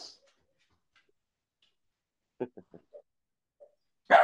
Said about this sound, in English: There it is. There's the dog.